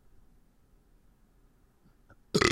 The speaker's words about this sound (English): Like, I have the burp.